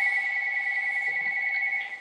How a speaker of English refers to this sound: So, once the phone stops ringing. Quits ringing.